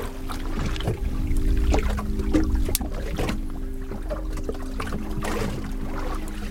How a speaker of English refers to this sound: And at the moment, there's no boat traffic, which is good, but there's no other sound other than that of a sort of faint, distant snap, crackle of pop of crustaceans somewhere 2,000 feet below us on the seabed.